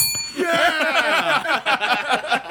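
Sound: hand bell ringing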